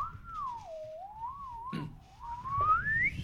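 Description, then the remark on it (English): A voice imitates a swanny (slide) whistle with one continuous, clear tone that dips, wavers, then glides steeply upward over about three seconds, fairly loud, with a brief knock midway. “I would like a swanny whistle, the one that goes...”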